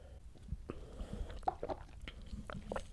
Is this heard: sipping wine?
yes